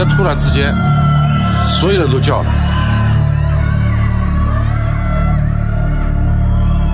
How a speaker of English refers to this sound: China right now. For some, Shanghai feels like the world's largest prison. These are people in apartment buildings screaming because they're locked inside.